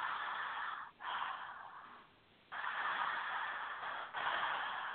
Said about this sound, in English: And just connecting the inhale and exhale.